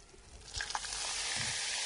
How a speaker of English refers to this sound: Wow, as soon as you put the water in, the bicarb all fizzed up. It now looks like lemonade, actually. Is that the carbon dioxide coming out? Yeah, that's right.